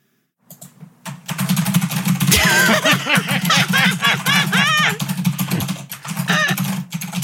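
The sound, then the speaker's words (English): Rapid, continuous clatter of typing on a computer keyboard runs for several seconds, fairly loud, with voices and laughter layered over it and a steady low hum underneath. “Hold on, will you give us a little bit of your typing?”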